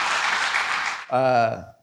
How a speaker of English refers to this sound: Can we, real quick, can we clap it up for the band? They did an amazing job with those songs.